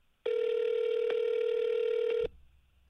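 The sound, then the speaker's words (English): A single loud, steady ringback tone sounds for about two seconds on an outgoing phone call, then cuts off into faint line hiss. No one speaks. “Quit your job and pick up the phone.”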